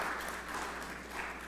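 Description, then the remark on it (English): A crowd claps steadily, a dense wash of many hands with no distinct individual claps, holding at an even moderate loudness throughout. “Can we get a round of applause for those this morning?”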